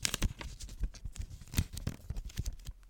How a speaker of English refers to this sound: Yeah, I need something to crinkle. Yes, let's crinkle in there.